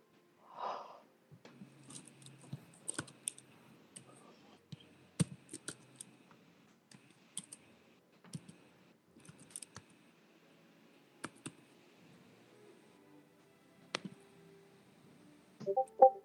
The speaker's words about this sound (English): That wasn't, sorry, whoops. That's me typing stuff. Oh, my stuff is freezing up.